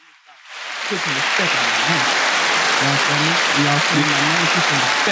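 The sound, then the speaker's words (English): Loud, dense applause swells up within the first second and holds steady to the end, with cheering crowd voices mixed in beneath the clapping. “That was a loud and long applause.”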